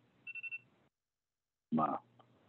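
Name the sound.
phone alarm going off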